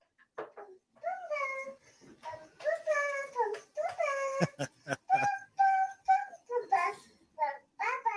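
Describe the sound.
A toddler girl in her crib hums a march-like tune in a high, sing-song voice, a series of short, rhythmic, sustained notes with brief pauses, fairly loud, with no other talk.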